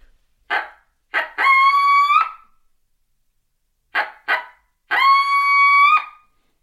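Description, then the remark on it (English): Two loud sequences, each with two sharp barks leading into a brief, tonal howl, separated by a second of silence, a coyote-style locator call used to make a bird gobble so it can be located. “And you may bark, howl.”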